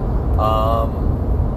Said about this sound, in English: And if you stuck through this whole entire time with the sound of the car and the tires and the road and everything like that, thank you very much.